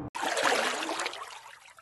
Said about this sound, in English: Then Dipper opened her very toothy mouth, and the fish fell into her water bowl.